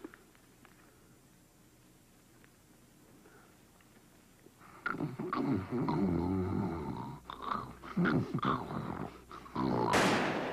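After a few quiet seconds, loud snarling, growl-like noises rise and surge unevenly. Then, at the very end of the radio ad, a single sharp, harsh gunshot bursts out as a man shoots a woman in the head.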